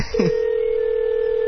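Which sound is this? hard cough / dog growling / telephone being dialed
telephone being dialed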